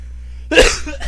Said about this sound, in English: Well, God bless you. Thank you.